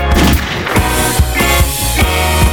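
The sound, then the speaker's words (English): Fireworks burst in a quick run of loud booms, about one every half second, layered over a dense, sustained musical drone with no voices. “Now make them fireworks.”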